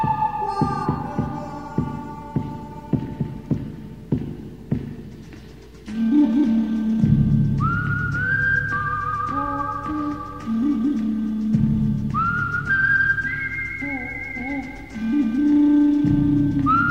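Western-style film theme music with a whistled melody gliding over a deep, throbbing bass, opening with sharp percussive hits before the fuller tune swells in, loud and with no talking.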